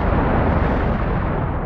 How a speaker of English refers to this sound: 20 minutes after the collision with the SS Emo, at 9:04 a.m., the explosives aboard the SS Mont Blanc detonated. The shockwave created by the blast moved outward at a speed of over 3,000 feet per second.